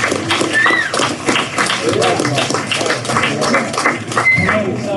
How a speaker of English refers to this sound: One more big round of applause, please, for the San Marcos High School Chamber Orchestra.